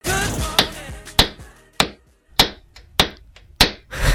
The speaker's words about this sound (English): That would be a hammer sound effect because it is time for hammer time.